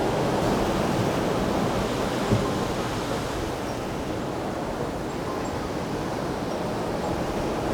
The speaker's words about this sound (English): I'm getting the sea, the waves, as they splash through, they're getting kind of backlit.